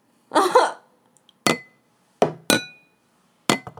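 A glass is clinked several times in sharp, ringing taps with short bright tails, preceded by a brief muffled rustle or cough. The strikes are fairly loud and spaced irregularly.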